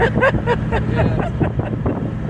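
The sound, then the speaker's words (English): A car accelerates hard from 0 to 60 or 80 in about 4 seconds, its engine droning loudly and steadily, heard from inside the cabin with heavy wind and road roar, while muffled voices murmur underneath. “That was 0 to 60, 80 in about 4 seconds. Do it again.”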